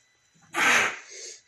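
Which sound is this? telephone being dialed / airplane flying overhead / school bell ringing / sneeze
sneeze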